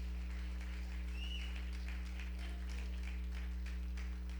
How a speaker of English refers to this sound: And for that, you ought to give Jesus a hand clap of praise.